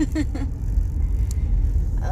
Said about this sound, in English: You know, and traffic is a bitch right now too, and it's just like, why is there traffic? There shouldn't be any traffic, right? But there is.